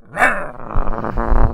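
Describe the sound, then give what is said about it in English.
A person imitates Dog the Bounty Hunter as a dog, giving a sharp bark-like yelp followed by a low, rumbling growl that rises and falls, loud with no other talking. “Woof! Woof!”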